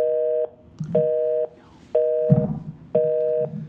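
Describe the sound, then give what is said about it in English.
A telephone busy signal from a dropped call beeps four times in a steady on-off rhythm, each tone about half a second long, with faint low rumbling noise filling the gaps between beeps. “His phone dropped, or this thing did.”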